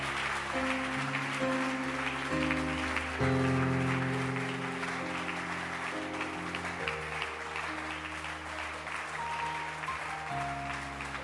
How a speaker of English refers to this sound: Clap your hands for Jesus. Keep clapping your hands. Beautiful.